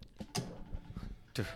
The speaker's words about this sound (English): I'm shuffling these chips. So? So what? It's a fucking talent.